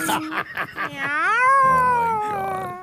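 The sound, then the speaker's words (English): A person imitates a cat meowing: a few short, quick meows, then one long, drawn-out wavering yowl that rises and slowly falls in pitch. “Meow. Meow. Meow. Meow. Meow. Meow. Meow. That's a long fight.”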